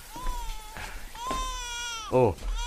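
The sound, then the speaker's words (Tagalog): A baby cries in a few drawn-out, high-pitched wails, ending with a brief, louder and harsher outburst. “Ba't umiiyak yung bata? Si baby kasi.”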